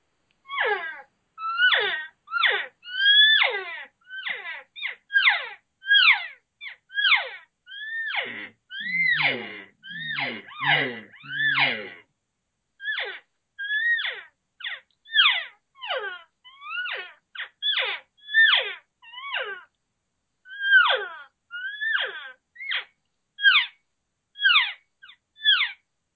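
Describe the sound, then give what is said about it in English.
A person does cow calling, imitating cattle with a long run of short, wailing moo-like calls, each sliding up or down in pitch, varying the tones by opening and closing the lips, repeated rapidly with brief pauses. “give me a little of your cow calling and let me hear some of it”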